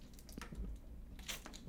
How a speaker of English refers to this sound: I'm going to take a sip of this water right now.